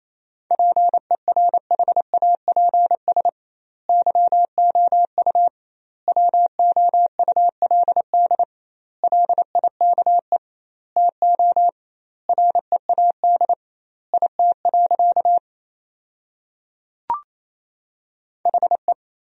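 Fast Morse code beeps at 28 words per minute with double word spacing, sending sentences built from the top 500 words, at a single steady mid pitch, keyed in rapid bursts of dots and dashes separated by short gaps, with a brief click near the end and no voices.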